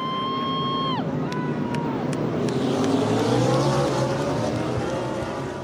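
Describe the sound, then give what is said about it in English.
NASCAR race car engines roar loudly around a track, one high engine whine dropping sharply in pitch as a car speeds past, over a steady, dense rumble of more cars. “NASCAR estimates it uses 100,000 gallons of leaded fuel in a racing season.”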